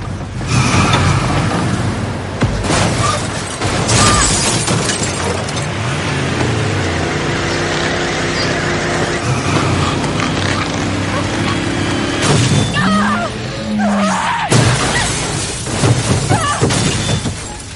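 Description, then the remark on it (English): In the game Resident Evil 3, a vehicle engine roars and revs amid a loud, chaotic crash as Jill drives into Nemesis on a parking garage rooftop and pushes him off, with bursts of shattering glass and crunching metal breaking out repeatedly before settling into heavy rumbling. “It adds a confrontation on the rooftop of a parking garage where Jill straight up crashes into Nemesis and pushes him off the side of the roof.”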